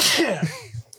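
A single loud sneeze bursts out with a sharp breathy blast, then trails off into a brief voiced tail and a few faint sounds.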